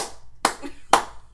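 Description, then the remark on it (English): Two sharp hand claps about half a second apart, loud, each with a brief ringing tail, following the fading end of a previous clap. “Keeping the power. The power to clap.”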